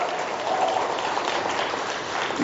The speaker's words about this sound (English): So first of all, can we just give the Lord a round of applause? Because it's been 43 years of ministry.